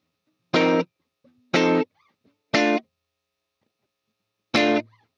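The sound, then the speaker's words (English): A doubled electric guitar plays four short, loud chord stabs, three evenly spaced and a fourth after a longer pause, each cutting off cleanly with no voices. “First, you got to double it up. Add a second guitar.”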